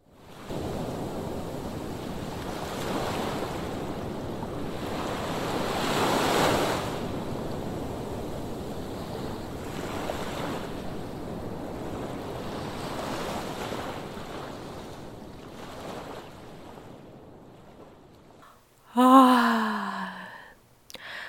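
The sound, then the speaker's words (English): Soft ocean waves wash in and out in a steady, hushed rhythm, the surf gently swelling and fading, with a brief breathy tonal sigh near the end. “But what I love best is to listen to the sea singing softly”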